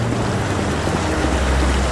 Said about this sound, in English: Okay, so we're walking past a pond with 5 water jets enabled in sort of like an X plus type pattern. Shooting water directly into the air and then it splashes everywhere. It looks very nice.